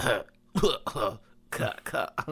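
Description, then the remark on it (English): A voice imitates people coughing in a movie theater: about six short, harsh bursts in quick uneven succession, fairly loud, with no other talking. “Because everyone's just coughing in the theaters.”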